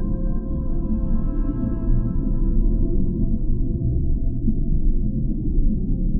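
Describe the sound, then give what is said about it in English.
A blue whale's song in the ocean: a deep, steady rumble carrying long, sustained tonal hums that hold level, then slowly thin out toward the end, with no voices present. “The Slow Dance of the Blue Whale”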